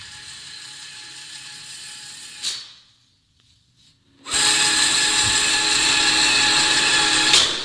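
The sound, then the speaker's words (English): A paper towel dispenser in a bathroom cranks out towels in two loud, steady mechanical bursts with a rattling, ratchet-like whir, separated by a short pause of near silence. No one speaks. “That's the paper towel dispenser.”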